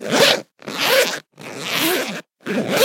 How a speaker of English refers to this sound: Oh, no, hang on. What? I've been zipped in. What have I been zipped into? I didn't know there were zips around me.